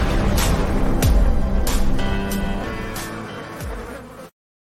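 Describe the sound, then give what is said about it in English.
A steady, loud insect buzz like a swarm of bees, droning continuously with slight wavering pitch and a few sharp transient hits, then cutting off abruptly near the end. “Opening buzz is brought to you by Busch Light.”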